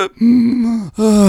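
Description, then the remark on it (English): A voice imitates two deep, drawn-out gasping inhales through the nose in quick succession, as when breathing again after having the breath knocked out, the first longer, both loud and strained with a groaning, voiced edge. “and he sat me up, and he's like, relax, relax, breathe through your nose, inhale through your nose.”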